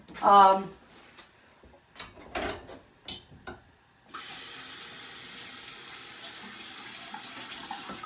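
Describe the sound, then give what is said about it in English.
A brief voice and a few light knocks and clatters, then a tap is turned on and water runs steadily over an onion to wash it, with an even hiss and splashing for the remaining seconds. “So we're gonna give this onion a wash, quick wash, which I don't have to show you.”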